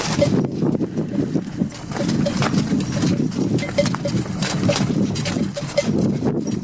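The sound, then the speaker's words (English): Camels growling: a steady stream of deep, rough, gurgling rumbles that keeps up for several seconds at a fairly constant loudness, with no talking over it. “Speaking of camels growling, I think we've got that as well.”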